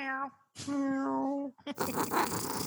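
A cat lets out two drawn-out, tonal growls, followed by a rough, noisy rumbling purr that fills the rest of the moment, with cats running all over the place.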